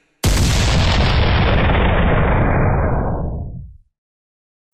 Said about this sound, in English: And now, the sound of a squid being fired out of a cannon.